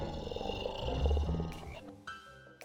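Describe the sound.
A person growls like a wolf, a low, rough, rumbling snarl that swells and then trails off over a few seconds, fairly loud with no other sounds.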